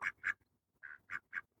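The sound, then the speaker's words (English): Ducks quack in short, nasal bursts: two quick calls, a pause, then three more in a steady run, clear with no talking; the ducks crowd at a man's feet, each wanting his attention. “surrounded by ducks at his feet, like a teacher in a nursery class, each duck desperate for his attention, wanting to be noticed.”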